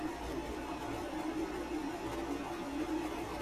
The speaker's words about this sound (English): And now let's just listen to the sound of the air conditioner.